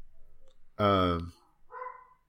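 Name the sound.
dogs barking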